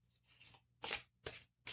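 Soft papery rustling of a tarot deck being shuffled, then three crisp riffling bursts in quick succession, fairly quiet and close, with no voices.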